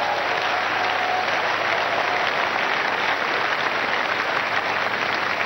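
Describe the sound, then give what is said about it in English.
A church audience claps for Jesus Christ, breaking into loud, sustained applause, a dense wash of many hands clapping steadily for several seconds with no voices rising above it. “Clap for Jesus Christ.”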